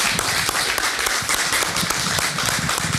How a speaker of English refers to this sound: All right, everyone, thank you. Give these guys a round of applause, please. Yeah, thank you.